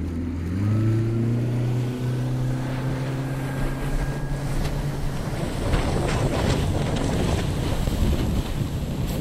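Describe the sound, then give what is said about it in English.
Hurricane-force wind of 130 to 150 miles an hour roars and buffets loudly and continuously around a pontoon boat on flooded streets, its motor droning low and steady beneath the gusts before the rushing wind swallows it. No voices. “We're in 130 to 150 mile an hour winds.”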